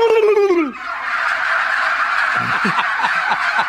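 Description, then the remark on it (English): A chorus of mature turkeys, nearly 24 weeks old, gobbling, several birds at once with rapid, bubbling, overlapping calls, loud, one descending gobble leading into a sustained noisy flock chatter. “Turkeys only gobble from about 20 weeks. These are 24 weeks nearly now. And so they'll gobble.”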